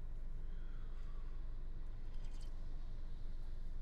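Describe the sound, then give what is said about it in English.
A steady, low road rumble from inside a moving car in heavy traffic fills the whole stretch, with a few faint, brief higher-pitched noises from passing traffic partway through. “It's a lot of traffic today.”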